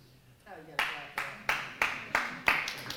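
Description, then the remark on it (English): An audience claps in a steady, even rhythm, about eight sharp claps in a row, following a brief moment of voice at the start, the preacher clapping along with a woman in the audience. “I'll clap with you, sister.”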